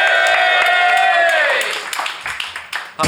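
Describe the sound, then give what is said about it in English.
A crowd cheers loudly as Brian Gittins is introduced, with a swell of high, sustained whoops and shouts that fade after a second or so into scattered, uneven applause. “You were sort of laughing at the fact people would even cheer at your name.”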